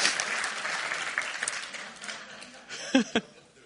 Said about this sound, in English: Can we have a quick clap for all cameos there.